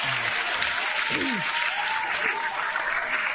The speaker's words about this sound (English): Oh, just applaud for that.